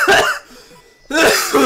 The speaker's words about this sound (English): And he starts coughing and spitting up blood.